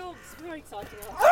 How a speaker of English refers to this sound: No, I think that dog is quite a barky dog.